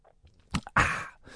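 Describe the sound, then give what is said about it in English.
Soft, moist chewing as Iain Lee eats Jaffa cakes on Talk Radio, with a couple of brief smacking bites followed by a longer, louder squelchy chew that fades out. No talking. “That's why I'm eating some Jaffa cakes.”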